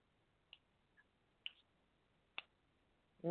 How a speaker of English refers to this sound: I hear your little foot pat. That's my finger snapping. Your foot was patting too, though.